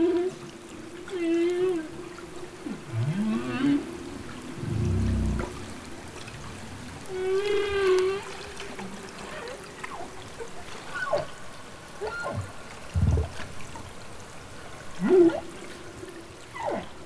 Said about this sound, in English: You know, when I first started my work with humpback whale social sounds, there were maybe 10 researchers worldwide that were interested in studying calls.